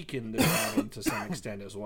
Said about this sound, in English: Bless you? That's coughing. Okay, I wasn't sure if that was a cough or a sneeze on my end, but... Sorry, I shouldn't have vaped in the middle of my sentence.